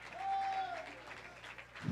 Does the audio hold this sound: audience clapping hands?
yes